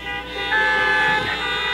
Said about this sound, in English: Honk your horn if you've ever seen one. Honk your horn if you've ever run through one.